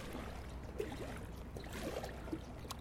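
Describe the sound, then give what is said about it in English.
Water sloshes and trickles as a person climbs aboard a kayak and pushes into a river in Elysian Valley, with a few soft splashes and knocks over a steady, low rushing background. “In excitement, I enter the river, climbing aboard a kayak in Elysian Valley.”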